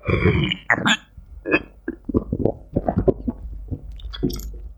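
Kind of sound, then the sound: food or drink, slurping beer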